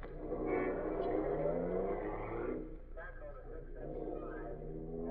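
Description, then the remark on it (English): A car engine revs up and the car pulls away toward a political rally at 80th Street and York Avenue, its motor rising and shifting in pitch over a few seconds, steady in loudness, with faint voices underneath. “The car up. There's a political rally at 80th Street and York Avenue. Let's take a look over there.”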